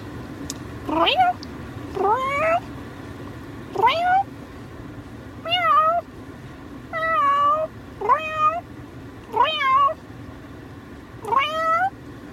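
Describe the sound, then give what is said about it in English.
A person imitates a cat, producing about nine drawn-out meows in a steady sequence, each rising and falling in pitch, fairly loud, with short pauses between them. “I make a pretty bomb cat noise.”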